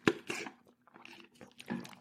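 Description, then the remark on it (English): Someone sipping Chick-fil-A unsweetened iced tea: a few short, crackly slurps and rattling bursts, likely ice shifting in the cup, with brief quiet gaps between them and no talking. “I've got to take a sip of tea here.”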